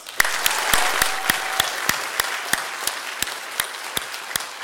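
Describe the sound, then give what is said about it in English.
A crowd claps over a dense bed of applause, with sharp, evenly spaced loud claps standing out in a steady rhythm for several seconds. “But I mean, let's actually really clap, okay?”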